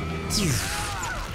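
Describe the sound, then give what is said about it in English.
A heavy, rumbling crash erupts suddenly and keeps roaring for about a second as a whole mountain smashes down in a movie scene, with whooshing tones sweeping through the noise. “Smashing the whole mountain down on him?”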